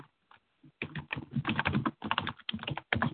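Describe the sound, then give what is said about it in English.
Rapid typing on a computer keyboard, a dense run of crisp clicks and clacks in quick bursts with short pauses, starting with a few sparse taps before speeding up. “Oops, I spelled that wrong.”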